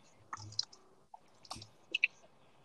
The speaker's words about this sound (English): There's a loud ass keyboard in the background. How is this loud? I can hardly hear it.